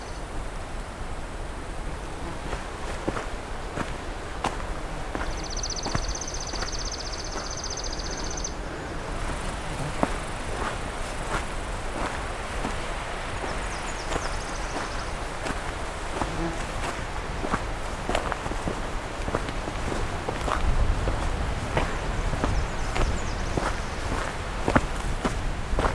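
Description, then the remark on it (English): Brisk footsteps crunch along a trail in a steady, quick rhythm, roughly two steps per second, with thin high-pitched buzzing tones drifting in and out behind them. “I'm going to try to hike fairly quickly here, somewhat brisk pace, because I have a lot of trail to cover.”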